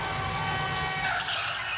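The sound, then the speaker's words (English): A sustained, loud screech of car tires skidding across pavement before the car hits a person, a steady high-pitched squeal lasting a couple of seconds with engine rumble beneath, heard alone without speech. “He runs off, gets his dumb ass hit by a car.”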